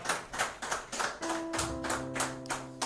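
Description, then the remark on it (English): An audience claps together in a steady rhythm, about three sharp claps per second, with sustained musical notes joining partway through. No one speaks over it. “You know, let's give mommy a round of applause.”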